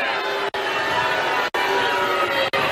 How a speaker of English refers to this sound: This crowd booed even when the lieutenant governor was promoting Trump masks.